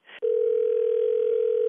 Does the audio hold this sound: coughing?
no